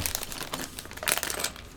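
A plastic LEGO blind bag crinkling and rustling as it is torn open, a continuous stream of crisp, bright crackles with a louder burst near the end and no voices.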